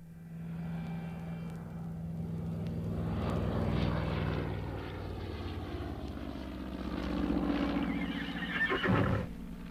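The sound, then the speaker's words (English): A propeller aeroplane engine sound effect in a radio play drones steadily, its low hum swelling louder midway and again near the end, with no voices. “The way they came in and out of the doors, and the way they had to break down the door, and then when they went up in the aeroplane, you'd swear you were there beside them both.”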